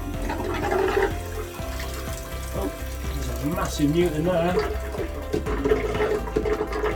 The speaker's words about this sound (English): So all the pipes are just clearing out and draining.